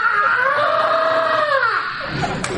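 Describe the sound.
A man lets out a long, loud, sustained high-pitched scream imitating a rock singer's wail, held steady for nearly two seconds before sliding down and trailing off.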